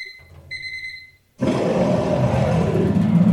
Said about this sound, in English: And then after that 60 seconds is up, you'll hear the sound of a cat. That means wrap it up then, or else you're going to bring out the angry West Hollywood bear.